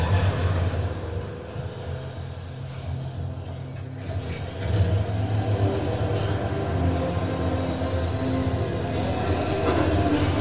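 A locomotive engine rumbles steadily with a heavy low drone and a mechanical clatter. It eases slightly, then surges louder just before the halfway point and holds that level to the end.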